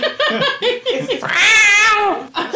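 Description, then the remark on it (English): A person mimics a kitten, making a few short squeaky mews followed by one long, wavering, drawn-out meow, fairly loud. “And I turn him into a little kitten.”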